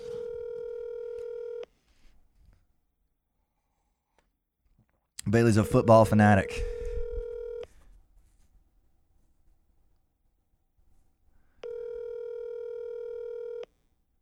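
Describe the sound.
A telephone ringback tone sounds in three steady two-second bursts separated by long silent pauses as a call is placed to a woman, while a man briefly speaks over the second ring.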